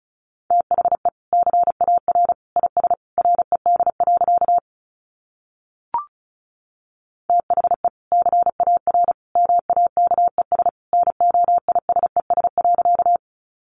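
Fast Morse code beeps at a single steady mid pitch, sent at about 35 words per minute in rapid bursts of short and long tones, broken by a pause with one brief click.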